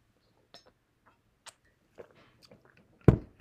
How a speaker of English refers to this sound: So I'm just going to have a drink of water here as we dive in.